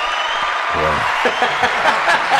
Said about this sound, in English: That was the most undeserved round of applause ever in the history of this show. In the history of applause.